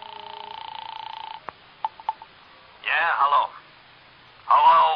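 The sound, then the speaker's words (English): A steady telephone tone hums, then a few sharp clicks of dialing follow, and two short buzzy bursts sound like the line ringing, thin, with no talk over it, as a call is placed to Villa 3 at the Wilshire Gardens. “So I found a phone and called Villa 3 at the Wilshire Gardens.”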